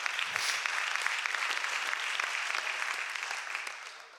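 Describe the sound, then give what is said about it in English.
An audience claps their hands in a steady, dense burst of applause, many hands clapping together at once and holding a fairly even level before starting to thin out at the end. “Clap your hands today.”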